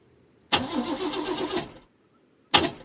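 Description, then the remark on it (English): A car engine cranks and turns over for about a second with a rough, pulsing churn, falls silent, then a second start attempt bursts in loudly. No one speaks. “Charlotte, turn it off and then turn it back on again.”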